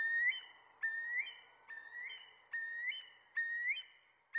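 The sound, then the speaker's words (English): A curlew calls repeatedly, about six clear, rising whistled notes in a steady rhythm, each swelling and trailing off, fairly loud with no other sounds around it. “Lots of birds have really interesting, special calls, but there is something I think strangely sort of elevated about curlews.”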